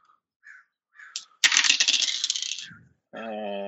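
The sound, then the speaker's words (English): A few light clicks, then dice rattle and clatter loudly for about a second before settling, followed by a short buzzy tone at the end. The dice are rolled for a strength roll with a bonus die in a tabletop role-playing game. “Strength roll with bonus die.”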